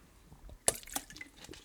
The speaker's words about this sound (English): Excuse me. Let me get a little drink of water here.